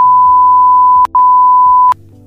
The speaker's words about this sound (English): They bleep it out. I hope you realize this is gonna be one long bleep. It's just gonna go beep.